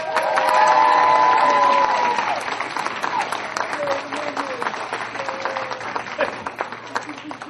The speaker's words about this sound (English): Okay, so to all of these lovely people, a round of applause.